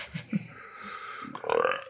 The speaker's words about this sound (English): Oh, good. Keep that belch in there.